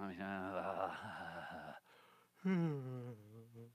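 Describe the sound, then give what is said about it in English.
A loud, drawn-out yawn with a wavering voiced groan, a brief pause, then a second shorter yawn sliding downward in pitch. No words are spoken. “Do you see I'm yawning?”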